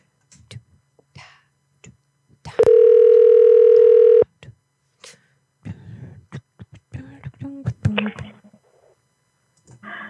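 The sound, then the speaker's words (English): An outgoing phone call rings once, a loud steady electronic tone lasting over a second, surrounded by soft clicks and handling noise, followed by brief muffled voice fragments on the line. “We know it gets kind of, you know, flaccid when nobody picks up the phone.”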